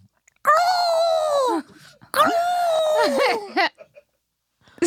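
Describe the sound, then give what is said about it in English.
A person imitates an ostrich call with two drawn-out, wavering moans, the second longer and bending in pitch near its end. The voice is fairly loud, with no talk alongside. “An ostrich, I think, goes.”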